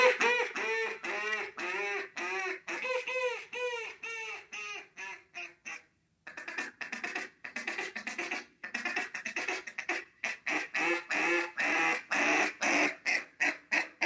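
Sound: duck call blown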